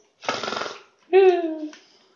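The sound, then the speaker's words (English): A person imitates a loud snore: a raspy, rattling inhale followed by a droning, voiced exhale that trails off, all in about two seconds. “Let's wonder if he's snoring loudly again.”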